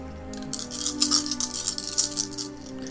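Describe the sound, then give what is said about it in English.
Six dice rattle and clatter together across a hard surface, a dense burst of sharp clicks lasting about two seconds before settling. No one speaks. “Okay, so out of those 6 dice, only one of them is an 8 or above.”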